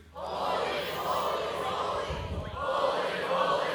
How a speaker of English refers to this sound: when you hear the first group respond, holy, holy, holy, you respond in kind. That's antiphonal praise.